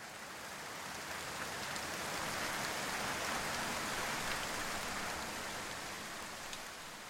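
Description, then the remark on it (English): Steady rain patters down on leaves in the woods, starting off in the distance, in a soft, continuous hiss with scattered individual drops ticking through it; no voices, just the even wash of rainfall throughout. “You could hear it start off in the distance, water connecting with leaf. It was Mother Nature putting her finger to her mouth and giving the world a giant shh.”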